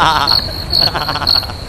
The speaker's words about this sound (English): And then I got a good minute of crickets for whenever you make a joke.